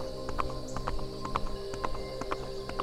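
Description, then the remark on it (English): Hooves of an old mare being ridden clip-clop at a steady walking pace, each hollow knock evenly spaced, set against a constant low droning hum in the background. “She told me to take the old mare out for a ride, that it would do the horse some good.”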